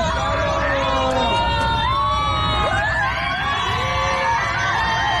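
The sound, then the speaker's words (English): A dense crowd of airplane passengers on a flight erupts in loud shouting and cheering, with many overlapping whoops and cries rising and falling continuously, as a flight attendant opens the bathroom door on two people inside. “But there's an audio clip going around of passengers freaking out when a flight attendant opens the bathroom door to see 2 people joining the Mile High Club.”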